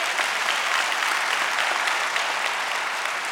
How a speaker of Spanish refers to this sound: Date un aplauso, gloria a Dios.